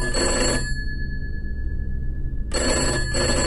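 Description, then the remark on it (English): A telephone rings in a government building in a small town in southern Germany, in two bursts with a pause between them, a bright buzzing bell tone over a low background hum, loud, with no voices. “The phone rings.”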